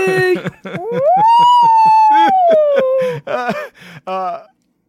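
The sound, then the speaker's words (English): A voice imitates a whale call with a long, loud moan that swoops upward and slowly sinks over a couple of seconds, followed by a few shorter warbling hoots. “Whale noise!”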